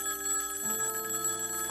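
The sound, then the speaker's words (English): A telephone rings at the Cook County Medical Examiner's Office with a bright, steady electronic tone holding level for under two seconds, its high harmonics sustained and even, with no voices present. “Although, as far as anyone knew, the poisonings had been limited to the Chicago area, anxious calls from all over the country were pouring into Johnson & Johnson headquarters and hospitals alike.”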